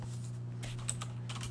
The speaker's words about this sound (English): Sorry, guys. I just want to make sure that I don't sound too foolish here, even though I'm sure hearing me click on my keyboard makes me sound all the more foolish.